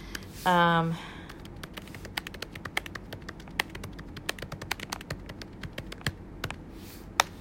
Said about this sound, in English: So I'm typing on my Mac. Let's see. Let's see what we have.